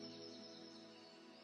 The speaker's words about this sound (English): Got some birds chirping.